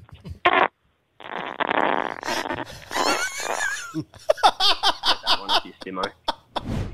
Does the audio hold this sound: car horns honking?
no